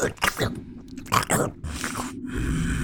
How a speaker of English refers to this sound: You just hear this crunching as it